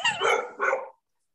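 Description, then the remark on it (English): A dog barks twice in quick succession, two sharp, fairly loud woofs, then silence. “Your dog's really mad about the fact that I don't like quads.”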